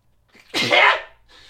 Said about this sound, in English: Well, that's staying in. My demon sneeze.